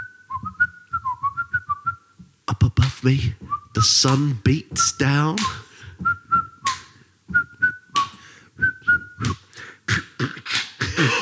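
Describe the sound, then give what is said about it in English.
A person whistles a jaunty, bouncy tune, first alone for a couple of seconds, then in short bright phrases that keep popping up between and beneath a man's talking. “I'm a snake. Whistling a jaunty tune.”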